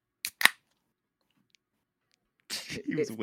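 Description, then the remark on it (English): A can of IPA beer with cedar in its name is cracked open with two quick, sharp pops in a row, followed by a stretch of silence before people begin talking. “Let's get that crack. It's an IPA, and it's got cedar in the name.”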